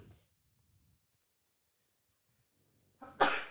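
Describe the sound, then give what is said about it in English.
A single sudden sneeze bursts out loud after about three seconds of near silence, a quick intake followed by a sharp, breathy explosion. “Bless you.”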